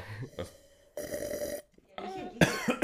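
A loud, close-up slurping sip of wine right in front of the microphone, a brief pause, then a few harsh, sputtering coughs from inhaling some of the wine, right at the microphone.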